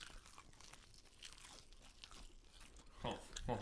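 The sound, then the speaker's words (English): Crunchy bites into fried naked chicken wings, several people biting together on a count of three: a steady crackle of chewing capped by two loud, sharp crunches near the end, with several people munching at once. “On the count of three, let's all give that crunch.”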